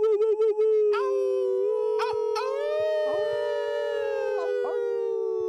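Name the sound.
people imitating a howl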